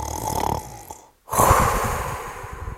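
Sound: voice imitating snoring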